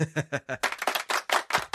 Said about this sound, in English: Congratulations, Adam Jones. It's like a nice golf clap for that.